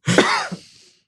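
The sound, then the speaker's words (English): A harsh, raspy cough with a short throaty follow-up catch, like someone sputtering after swallowing wrong; loud and brief, then trailing off into quiet. “I'm just gonna let you cough while I talk.”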